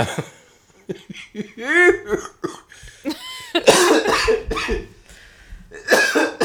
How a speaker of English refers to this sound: That made me cough.